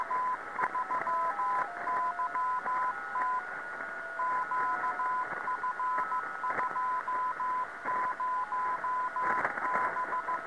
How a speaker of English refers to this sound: Andy says shortly after there were no Whisper or JT9 packets, but the balloon payload sent the default Morse code sequence only. Have a listen to this CW signal.